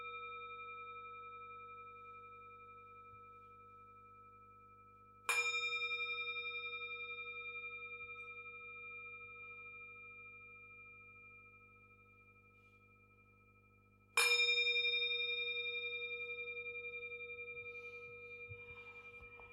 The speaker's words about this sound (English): You can open your eyes and come out of meditation when I ring the gong, this bell, 3 times.